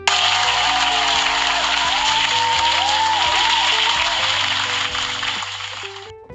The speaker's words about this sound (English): So, round of applause for the weekend.